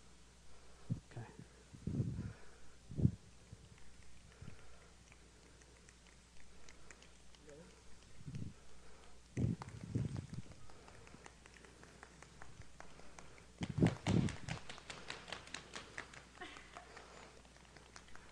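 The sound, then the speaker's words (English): A group of people imitates rain with their hands, producing soft, scattered taps and rubs that swell into a brief, denser burst of pattering before thinning out again, faint throughout. “We're going to make it rain in here.”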